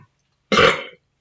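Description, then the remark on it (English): A single loud, rumbling burp lasting about half a second with a guttural rasp that fades out. No voices around it. “I turned away to burp and you got closer.”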